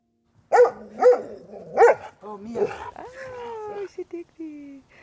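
A dog barks three times in quick succession, followed by whining, yelping and whimpering sounds with rising and falling pitch, as a woman in a garden throws an apple for it.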